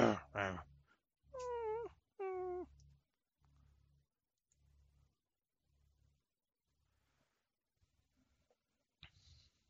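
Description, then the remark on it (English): A creature's rough, low growl gives way to two loud, wavering whines that slide downward in pitch, followed by soft rhythmic low pulses fading almost to silence before a brief noisy rustle. “You can hear a growl of a creature, followed by a whine, then silence.”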